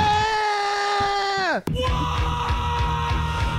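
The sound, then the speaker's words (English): A person mimics a crying baby with one long, loud, sustained wail that bends sharply downward in pitch and breaks off, followed by a jumble of noisy, broken vocal sounds. “Crying.”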